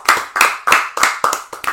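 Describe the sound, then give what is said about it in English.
Loud, sharp hand claps from an audience after a prize winner is announced, about six in a steady, evenly spaced rhythm, each with a short ringing tail, with no voices. “For this, we want everyone to give a big clap after we announce the winner of the prize.”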